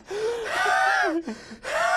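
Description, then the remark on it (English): A voice imitates the strained, asthmatic wheezing breath of a hugely overweight axe-swinging character: two long, raspy, tonal inhales with a brief catch between them, fairly loud, with no words spoken. “At the end of it, he has like asthma and he's like breathing Yeah.”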